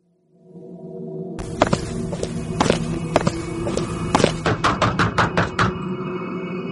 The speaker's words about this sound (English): Rap, rap, rap. You can hear her tapping her beak on the tree trunks as she hunts for food.